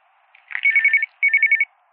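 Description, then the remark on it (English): A telephone on Chief Morrison's private line rings at 5 o'clock in two quick electronic bursts, each a rapid trilling warble at a fairly high pitch, separated by a short pause. It is loud and clear, with no voices. “Who's calling Morrison at 5 o'clock?”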